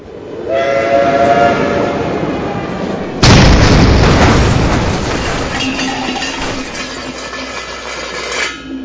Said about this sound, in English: Well, no, seeing as a train just ran over my new car.